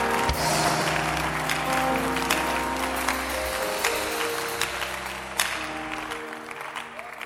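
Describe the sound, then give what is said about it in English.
An audience claps hands to praise the Lord in a sustained burst of applause, dense and loud throughout, with steady low organ or keyboard tones underneath and a few sharper claps standing out. “Can you clap your hands and praise him tonight?”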